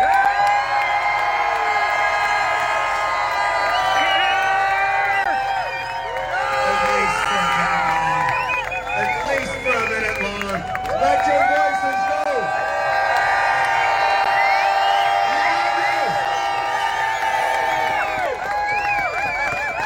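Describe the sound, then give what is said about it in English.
A large crowd cheers and applauds loudly and steadily for about twenty seconds, many voices whooping and shouting over a dense wash of sound, with a brief dip near the middle. “Folks, I would hope that you could stand up and give this man, this humble, beautiful soul, the servant of Calgary, the servant of God, a much, much bigger round of applause, please.”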